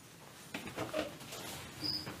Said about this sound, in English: Is that the one I killed? Do you have a zombie cricket?